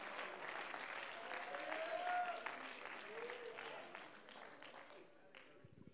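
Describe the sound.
An audience claps their hands to the Lord in praise, a dense wash of many hands at fairly constant loudness with scattered voices mixed in, tapering slightly toward the end.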